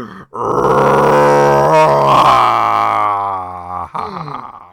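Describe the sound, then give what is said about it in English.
A voice imitates a hungry monster's growl coming from beneath: one long, loud, low guttural groan that holds steady for about four seconds, breaking briefly near the start and end, with no speech. “A terrible, terrible growl comes from beneath.”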